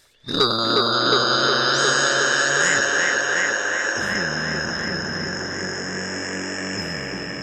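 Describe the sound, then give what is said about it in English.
A voice imitates the exhaust of an XR200 dirt bike fitted with a Super Trap exhaust pipe: a sustained, buzzing engine drone, rich in harmonics, holding steady loudness for several seconds with slight pitch shifts like gear changes. “My parents have a place up in Maine, and, you know, I like to go up there and ride my XR200 with my super trap exhaust pipe that I put in there. What kind of sound does it make?”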